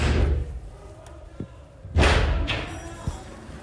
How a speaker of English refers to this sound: During which time they listened to the invaders banging on that door, as you can hear on a recording from one of the staffers' phones.